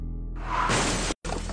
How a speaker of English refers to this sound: The car smashes into the person. The person hits the car, moves up and over the windshield.